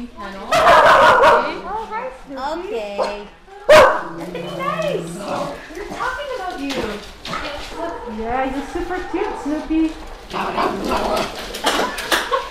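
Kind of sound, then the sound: animal, golden doodle dog barking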